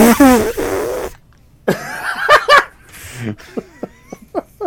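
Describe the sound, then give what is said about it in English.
A voice imitates nose blowing with a few honking, blustery bursts, fairly loud, broken by short pauses and followed by scattered giggles and chuckles. “I'd do that, but I'd probably actually blow my nose, and I'm trying to, like, hold off.”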